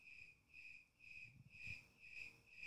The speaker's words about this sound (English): with all the crickets in the studio